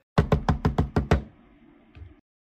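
knocking on a door

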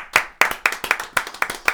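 people clapping hands

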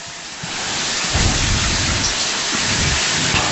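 rain falling outdoors

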